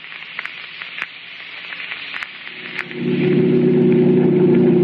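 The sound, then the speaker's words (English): Crackling static hiss with scattered clicks gives way to a car engine's loud, steady low roar that swells in and holds, as the car drives at 90 with the accelerator only halfway to the floor. “Look, we're doing 90 and I only have it halfway to the floor.”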